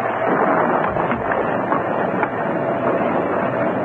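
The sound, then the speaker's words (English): Strong wind roars steadily as it comes up and rain begins, a dense, unbroken rush of noise with no pauses. No voices can be heard. “The wind's come up.”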